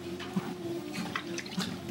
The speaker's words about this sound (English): Now, let's get some water into me.